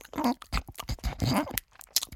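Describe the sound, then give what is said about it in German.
A voice imitates loud, smacking chewing and biting of leaf bread, with a quick run of wet, crunchy mouth clicks and smacks in an uneven rhythm. “»Nein«, die Stimme klang fast beleidigt, dann biss sie wieder laut und schmatzend ab.”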